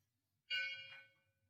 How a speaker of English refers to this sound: Sound of the bell, the breath, the body. That's it.